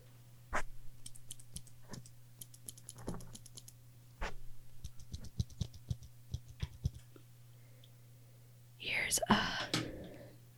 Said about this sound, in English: Do you guys want to hear some ASMR? Here's a stack of post-it notes. Here's a mechanical pencil.